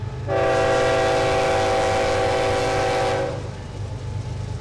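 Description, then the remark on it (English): A loud train horn blares steadily for about three seconds over the deep rumble of a coal train passing right alongside a farm, the rumble continuing after the horn cuts off. “Today, coal trains run right alongside the farm 3 to 4 times per day, a striking reminder of the state's long history with extractive industries.”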